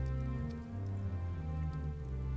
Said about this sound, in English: I fear the rain will not let up.